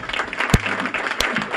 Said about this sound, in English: She finished on the honor roll at Shakopee High School. I'll hold for applause.